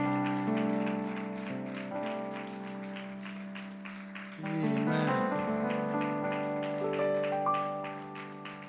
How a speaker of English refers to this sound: I just wonder if all over this house, if we could just give the Lord another great big hand clap of praise.